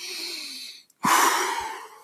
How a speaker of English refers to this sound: Okay, I'm out of breath already.